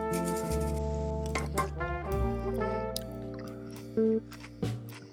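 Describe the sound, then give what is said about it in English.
A large amount of milk poured into a bowl of cereal, a steady wet gurgling stream with a few sharp crackly splashes and a rising filling tone, no voices. “Well, in classic me fashion, I poured a ton of milk in here.”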